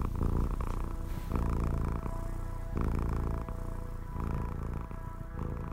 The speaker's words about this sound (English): And so my cat's cuddled up against my chest. I really like going to sleep listening to her purr. It's really comforting.